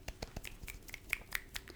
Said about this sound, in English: Claps for you.